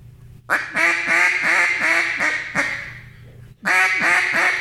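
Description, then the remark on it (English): A loud duck call imitating a boss hen mallard: a rapid descending series of raspy quacks, a brief pause, then two more quacks. “And speaking of the audio part, do real quick a boss hen.”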